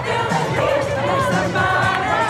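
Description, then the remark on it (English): A large crowd celebrating outdoors in the streets of Washington, D.C., over Joe Biden's election victory, with dense, overlapping cheers and shouts that stay loud and continuous throughout, a lively wash of many voices. “people were out in the streets, celebrating, honking, popping champagne. Crowds of people were singing and dancing.”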